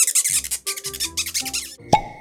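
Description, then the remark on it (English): Cleaning ears with a Q-tip cotton swab: three quick bursts of squeaky, scratchy rubbing, then a sharp little pop followed by a brief ringing tone. “Just going to clean out my ears quickly with a Q-tip.”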